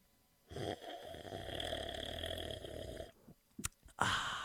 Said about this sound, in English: Oh, I know what he's doing now. Something? He's drinking coffee or something. That is correct.